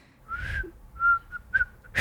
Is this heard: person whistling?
yes